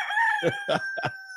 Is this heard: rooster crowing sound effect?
yes